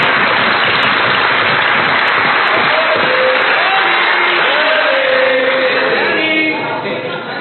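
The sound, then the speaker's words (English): Liberal members of Parliament jumping up and clapping together in a dense, steady wash of applause that holds loud throughout, with a few raised voices and calls mixed in, easing slightly in the final second. “Look at all the Liberals jumping up and clapping.”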